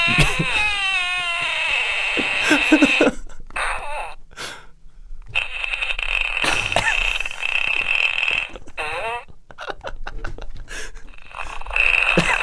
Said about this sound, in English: Yeah, it's always a good thing to be able to make a fart, have a fart sound maker.